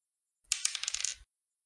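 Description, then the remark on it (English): Dice rattle and tumble across a hard table in a quick, bright clatter of small clicks lasting under a second, with no talking, as dice are rolled for an attack in a tabletop game. “Oh, that's the wrong dice.”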